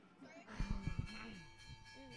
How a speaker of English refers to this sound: The bell rings for planning session.